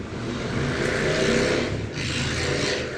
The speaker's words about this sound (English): Man, well, fuck motorcycle drivers. They cut off their mufflers so they can make that noise.